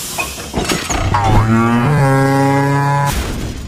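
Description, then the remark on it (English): A single long cow moo, loud, rising then holding a steady droning pitch for about two seconds before cutting off, with no other voices. “That's a moo in one.”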